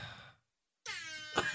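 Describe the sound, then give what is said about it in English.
A trivia game buzzer sounds twice: a short harmonic blare, a brief silence, then a longer, steady, horn-like tone with stacked overtones that swells louder just before cutting off. “Oh, wait. Hold on. This is our buzzer.”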